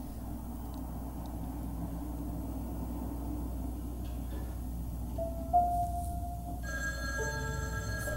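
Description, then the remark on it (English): A princess telephone starts ringing partway through, a bright warbling electronic trill over a steady low rumble of background noise, with no voices. “Those, it's called a princess phone, I think.”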